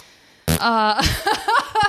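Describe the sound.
A fart sound, a single loud, buzzy blurt lasting about half a second, is followed immediately by someone talking.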